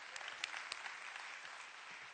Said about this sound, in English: Come on, give them a hand. Come on, y'all, clap for them.